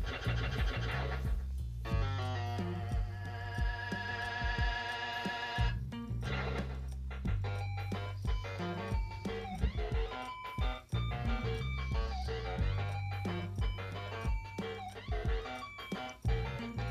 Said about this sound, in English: Yeah, so I don't know how well or how much the microphone picked up there, but shoot, so I am playing Game Boy Donkey Kong on my TV via the Super Game Boy.